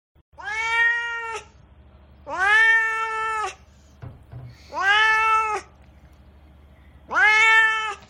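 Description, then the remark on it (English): A cat named Duarte meows four times in drawn-out, insistent cries spaced a second or two apart, fairly loud, with a low steady hum underneath and no talking. “Well, you know who else hated it? It's my cat, Duarte.”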